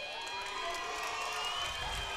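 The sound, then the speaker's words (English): A large crowd cheers and shouts loudly and steadily for a homecoming king candidate as he is announced, a dense wall of voices and whoops sustained throughout without pause. “This guy must be the popular choice. Everybody's cheering for him.”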